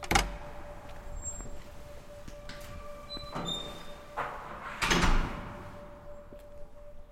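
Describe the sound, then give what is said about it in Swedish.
The entrance door of an apartment building on a high-lying street overlooking lake Åsunden opens on a sunny spring evening, 6 degrees, with birdsong in the air: a sharp click, a few brief squeaks, then a heavier thud and rattle as it swings and settles. No one speaks. “Vi går in i porten i ett av husen.”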